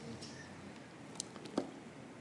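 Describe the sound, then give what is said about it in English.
Heavy rain pours in a steady, dense hiss, sounding muffled, heard during a church sermon, with a couple of sharper drips or taps standing out briefly near the end. “mercy, mercy me, is it ever raining? Can you all hear back there? The rain is tough competition.”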